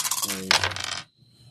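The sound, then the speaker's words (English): A quick clatter of dice being rolled for a game, tumbling and knocking on a hard tabletop, bright, settling within a second and leaving a faint ringing tail. “So you're, in fact, you two are going to have to fight while we wait for these rolls to see how you fare.”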